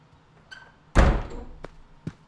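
A door swings shut with a loud thud that rumbles briefly, preceded by a faint latch click and followed by two sharper clicks as it settles.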